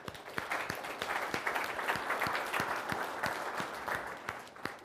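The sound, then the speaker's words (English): An audience at the SKUCon conference applauds the event's sponsors steadily, a dense wash of many hands clapping with sharper individual claps popping out over it, holding fairly even in loudness for about five seconds. “And why don't we give them a round of applause?”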